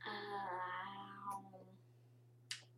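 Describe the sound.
A person lets out one long, wavering meow in imitation of a cat, fading after about a second and a half. A low steady hum runs underneath, and a short sharp click follows.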